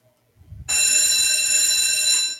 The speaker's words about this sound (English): What is that noise? School's out. That is a school bell.